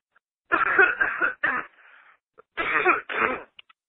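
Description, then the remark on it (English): A loud bout of coughing: two harsh, raspy clusters of a couple of coughs each, separated by a short pause, with no talking. “Sorry about that. Had a little cough there.”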